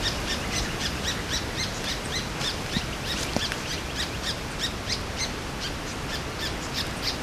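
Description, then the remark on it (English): A bird gives an alarm call as a swamp harrier flies past, a steady series of sharp, high chirps repeating rapidly without pause over a constant hiss of background noise. No one speaks. “That's an alarm call, or a call that's saying there's danger around.”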